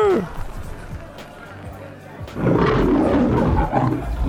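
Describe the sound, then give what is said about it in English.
A person lets out a loud, growling imitation of a lion's roar that swells up and holds for nearly two seconds, following a quieter stretch with a brief vocal sound at the start. “You just turned into some kind of lion.”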